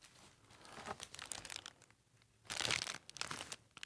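Paper crinkles and rustles in irregular bursts, with a louder crumpling crackle near the end, as if packing paper is pulled from a box.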